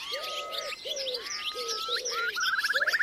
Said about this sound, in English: And yes, you might consider yourself lucky, but do you have any idea of what those dawn choruses might have sounded like 20 years ago? Thanks to new research published this week, I can now give you a glimpse of that.